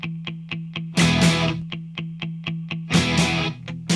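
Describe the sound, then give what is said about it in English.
Two distorted electric guitars chug out a steady eighth-note rhythm while a bright snare cracks on every beat, with bursts of crashing cymbal roughly every two seconds, played loud. “The drums come in with a simple snare hit on every beat. The second guitar starts to double the chugging eighth note pattern of that first guitar.”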